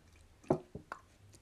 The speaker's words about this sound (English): It is 6:30 a.m. Tuesday Eastern Time, so I just had to take a slug of coffee there.